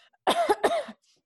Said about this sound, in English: That was not for the sake of that bit. It was just me genuinely coughing. It worked out.